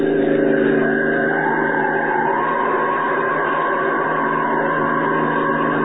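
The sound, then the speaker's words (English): A fast car's engine roars loudly and steadily for several seconds, its droning pitch climbing slightly as it speeds along, with no voices present. “All right, your car is fast, but Superman is faster.”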